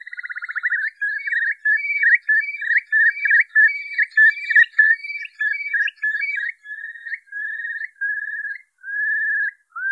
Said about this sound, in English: Tweet of this week is the curlew, and I have to admit it is one of the reasons I moved to the Isle of Man. The sound of curlews calling away across the mudflats of Derby Haven is one of the great delights of my life.